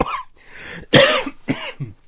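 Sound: coughing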